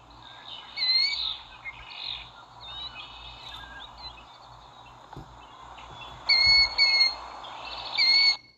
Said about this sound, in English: I don't know. It might just sound like any bird to you, but that's what a killdeer bird sounds like.